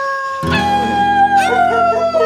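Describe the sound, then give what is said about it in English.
Several wolves howl together in a long, sustained chorus, their overlapping wavering tones rising and falling loudly, with no voices over them. “It's Thursday. It's Wolf Night.”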